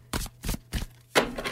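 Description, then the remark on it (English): Tarot cards are shuffled close to the mic for ASMR during a tarot reading, in several crisp, papery riffling bursts, each a quick rustle with brief pauses between, ending in a longer flurry. No one speaks. “Okay, we're going to just do one more round of shuffling here. Bringing it nice and close to the mic for some ASMR.”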